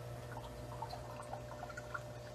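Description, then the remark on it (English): Sugar pouring into a jar of mead containing yeast, a soft, steady granular hiss with small scattered fizzing ticks as it foams up, over a constant low hum, quiet, with no voices. “Let's pour in 10,000 calories worth of sugar.”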